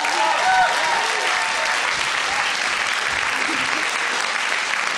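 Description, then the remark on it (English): Sustained audience applause after a told story, a dense, steady wash of many hands clapping at an even loudness for the full five seconds, with no distinct voices rising above it. “Round of applause”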